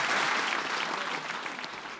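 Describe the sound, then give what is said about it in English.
An audience claps steadily for the debaters after a debate, a dense wash of many hands at a fairly even loudness that eases slightly toward the end of the two seconds, with no voices heard. “Another round of applause, please, for your debaters.”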